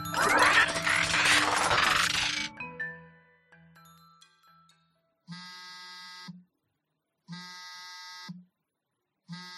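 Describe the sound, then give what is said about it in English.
A phone's notification alert sounds three times in a steady rhythm, each a buzzy electronic tone about a second long, as messages from the owner's mother keep arriving. A loud, noisy burst of sound comes first, then brief faint tones. “Your phone is really blowing up.”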